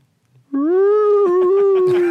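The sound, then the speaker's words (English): A human voice imitates a whale or seal call: one loud, sustained wailing tone that turns wobbly and breaks into quick pulses toward the end. “Sounds like a damaged seal. There's a whale.”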